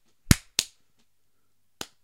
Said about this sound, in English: I think you might want to clap, though, because that looks like it's really out of sync. It always does look like that when it's on it.